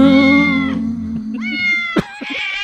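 A cat meows loudly and insistently, a long drawn-out yowl followed by a couple of shorter, rising meows, with no talking.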